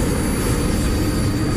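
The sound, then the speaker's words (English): A steady, heavy engine roar fills the air, a dense low rumble with a harsh hissing edge, like a struggling airplane engine droning without pause, from a plane with a damaged wing that is going down. “The creature used its heat vision again, but hit one of the plane's wings.”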